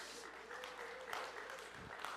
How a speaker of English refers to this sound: Why are you clapping the loudest,